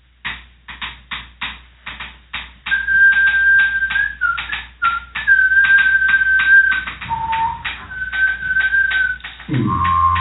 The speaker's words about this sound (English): Speaking of Canada, today's musical interludes are field recordings by Indigenous lesbian repurposed percussion and penny whistle duo